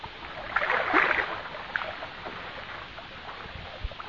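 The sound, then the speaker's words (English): Water sloshes and churns as a small pedal boat is paddled along on the sea, with a louder splashing surge early on that settles into steadier, softer lapping. “Or, on the other hand, many people nowadays find considerable enjoyment in taking out one of those little pedal boats for the afternoon.”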